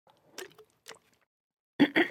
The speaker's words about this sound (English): Grab a sip of water.